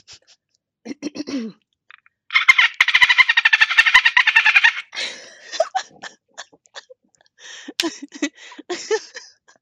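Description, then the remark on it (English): A voice imitates dolphin sounds: a rapid, buzzing train of high clicks lasting a couple of seconds, then short squeaky chirps and whistle-like bursts, with no speech. “I do want to hear your dolphin impersonation.”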